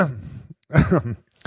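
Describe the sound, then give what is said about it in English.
A loud cough bursts right into the microphone, followed by a rougher, throaty follow-up and a short breathy sound, with no clear speech. “just cough right in that mic, please.”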